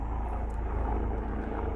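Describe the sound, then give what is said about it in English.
A helicopter drones overhead, a steady, heavy low rumble that stays loud and constant for the whole moment, with no voices over it. “Looks like the helicopters are coming to get you”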